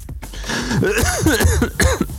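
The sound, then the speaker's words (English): A run of loud coughs in quick succession, rough and throaty, with voiced hacking between bursts and no clear words spoken: a person who is a little high coughing. “I'm a little bit high and I'm coughing.”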